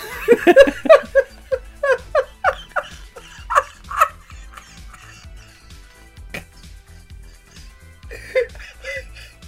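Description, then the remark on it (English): A person barks like a dog in a rapid string of short, yappy woofs that trail off into softer yips and whimpers, with a few later barks and a little laughter-like sound. “Well, I'm not a dog. What are you doing?”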